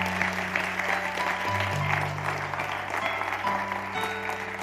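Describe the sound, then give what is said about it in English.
An audience at a morning church service claps steadily for several seconds, a dense, even wash of applause with a low sustained tone humming underneath and no one speaking. “Give them another round of applause this morning.”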